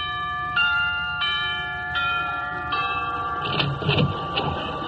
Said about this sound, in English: Gee, Sinatra has some house. Well, I'll ring the bell.